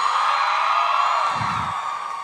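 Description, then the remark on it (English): An audience screams and cheers in one continuous, high-pitched roar that stays loud and steady for a couple of seconds, with a brief low thump partway through. “I'll take your screams as a sign of excitement and not that any of you are in physical pain right now.”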